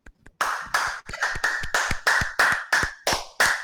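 Around a dozen sharp hand claps in a quick, steady rhythm, starting with two faint taps and then settling into loud, bright, even claps with no talking, clapping to thank viewers for reaching 150 subscribers on CastBox.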